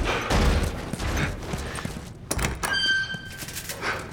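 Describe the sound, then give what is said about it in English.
A volley of gunshots, several heavy booming blasts fired at irregular intervals over a few seconds, loud, with a brief metallic ringing trailing one of the later shots. “Gunshots!”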